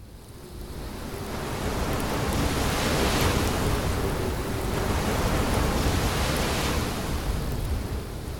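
Storm waves churn at sea in a steady, roaring wash of noise that swells and surges every few seconds. The sound is loud and continuous, with no voices.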